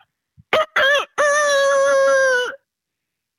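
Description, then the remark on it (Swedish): A man imitates a rooster's crow, two quick rising syllables followed by a long, loud, sustained note lasting over a second, then silence. The voice is clear with no talking. “Vilken tupp imitatör.”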